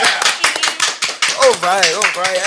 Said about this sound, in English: Thank you, our first female guest. Get another round of applause for that.